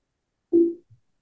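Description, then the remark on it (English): A short electronic notification tone from a device sounds once, steady and fairly low-pitched, fading out after about a quarter second, followed by a faint brief blip. No one speaks. “Oh, I just got a notification here.”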